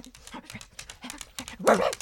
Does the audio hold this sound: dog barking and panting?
yes